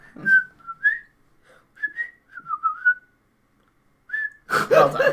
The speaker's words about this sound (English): and then like there's another scene with Peter and his friends, and then they come in and they're whistling it.